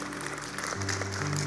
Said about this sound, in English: How many of you guys are thankful for our Sunday altar teams? Yeah, let's give a clap.